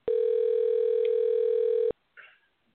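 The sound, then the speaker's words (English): A telephone ringback tone on an outgoing call: one loud, steady electronic ring lasting about two seconds, then it cuts off, leaving near silence with a brief faint sound afterward. “You hear the ringing?”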